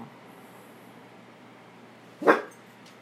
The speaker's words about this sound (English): Oh, I guess it's recording, so the dog is woofing. Come here, Storm. Woof woof some more.